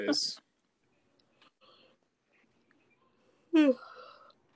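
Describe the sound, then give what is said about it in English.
A drawn-out voiced yawn with a sliding pitch, preceded by a short breathy burst and a few faint mouth clicks in near silence. “I'm yawning.”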